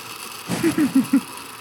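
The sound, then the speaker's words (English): A blender motor labors in a series of four short, low, groaning pulses, its pitch dipping and surging unevenly as it strains against a thick smoothie mixture. “That blender appears to be on the struggle bus.”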